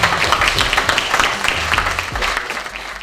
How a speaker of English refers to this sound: All right, let's give these guys another round of applause.